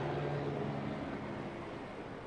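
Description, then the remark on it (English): A helicopter drones overhead above the streets outdoors, a steady, fairly loud engine rumble with a low hum that holds for the whole moment and fades only slightly toward the end. No one speaks. “And there's a helicopter flying over.”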